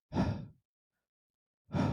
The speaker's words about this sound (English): One shot was fired, and you can hear a breath coming from the officer now.